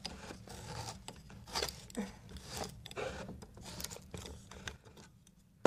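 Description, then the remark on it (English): A can of coconut milk being opened while cooking a Thai red curry: a run of short, irregular scraping and cutting bursts at a moderate level, ending in a sharp click. No one speaks. “Okay, I'm opening the can of coconut milk, which is actually quite grim.”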